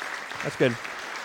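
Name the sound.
audience applause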